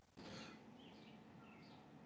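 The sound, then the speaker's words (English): Faint birds chirping outside an open window, a few short tweets scattered over a steady background hiss, with no one talking. “I hear birds in the background.”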